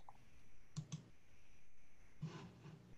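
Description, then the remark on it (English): A quick double click of a computer mouse inside a spreadsheet cell, two sharp taps close together, followed a moment later by a few softer clicks, all quiet with no talking. “I had to double click inside of the cell to get the blinking cursor.”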